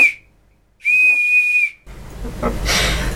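A whistle is blown hard: a shrill, steady blast at a single high pitch sounds for about a second after a brief earlier tail, then gives way to a loud, breathy rushing hiss.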